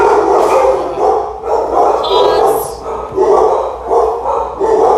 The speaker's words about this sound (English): We paused for a slight moment. The dogs were barking. We had to quiet them down.